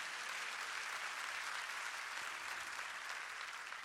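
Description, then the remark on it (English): An audience claps their hands together, a dense, steady wash of many overlapping claps that holds at an even loudness throughout, with no voices standing out. “Come on, clap your hands, everybody.”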